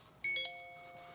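A bright electronic phone notification ding sounds alone, two quick chime tones in succession that ring out and fade slowly, clear with no talking.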